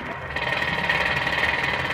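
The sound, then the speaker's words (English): Steady, dense mechanical rattling of pneumatic drills hammering away continuously as men work at a construction site with a tall scaffold, loud, with a buzzing vibration that never lets up for the whole stretch. “Men covered it like ants, working with pneumatic drills, shovels, wheelbarrows.”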